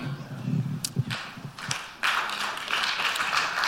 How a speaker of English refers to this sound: Wondering why everybody's applauding to these